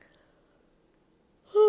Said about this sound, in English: Let's start with a good yawn stretch.